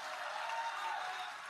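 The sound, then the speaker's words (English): A church audience claps their hands together for about 15 seconds when the preacher asks, in a dense, steady wash of applause that holds at an even, fairly soft level throughout, with no voices rising above it. “Take 15 seconds and clap your hands.”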